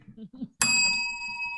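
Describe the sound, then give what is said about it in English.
A bell is struck once, sharply, and its bright metallic tone rings on steadily. A short stretch of talking comes just before, with faint voices beneath the ringing. “We used to have a bell on picture shows, so that was a tremendous synchronicity for me right now.”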